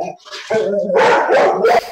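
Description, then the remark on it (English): A dog barks loudly in a few sharp, overlapping bursts, with a howling, whining edge to the yelps. “Sorry, that was, my dog wasn't happy with that either.”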